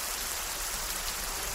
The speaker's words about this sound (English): Moist air colliding with intense heat and mountainous terrain breeds epic thunderstorms. Rainfall rejuvenates the arid land. Grass grows lush. Wildflowers spring forth. Gullies once dusty now rush with water.